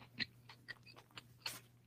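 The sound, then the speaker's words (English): Wet, crunchy chewing with a handful of irregular smacking clicks and crackles, fairly quiet, over a steady low hum and no talking. “At … says she tearing up whatever the fuck she eat.”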